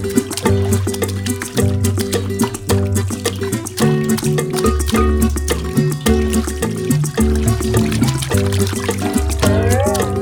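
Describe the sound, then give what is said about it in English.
Water trickles and pours steadily for several seconds, a continuous splashy babble layered over a sustained musical backing of low tones and bass notes. “El agua suena así. The water sounds like this.”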